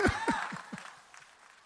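Four quick hand claps in an even rhythm, fairly soft, trailing off into quiet with a faint breathy sound afterward.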